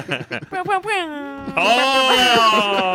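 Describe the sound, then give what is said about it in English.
Warbling, bleating vocal sounds give way to a long, loud, blaring air horn blast that holds a steady, buzzy tone for about a second and a half. “A fan of the air horn.”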